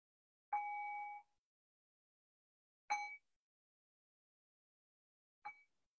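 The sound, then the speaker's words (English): A small meditation bell is struck three times to end a guided meditation, a few seconds apart, each clear ringing tone fading out, the last strike softer and shorter. Silence fills the gaps, with no talking. “And I'll cue that by ringing the bell 3 times.”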